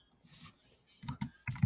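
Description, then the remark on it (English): Computer keyboard keys clicking in quick bursts, a few sharp taps after a soft patch of lighter typing, fairly quiet with no talking. “If you can hear me, my keyboard is ticking away click, now.”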